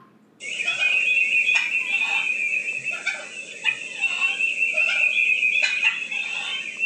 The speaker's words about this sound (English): it's just a female turkey yelping away. Here is their cluck and purr.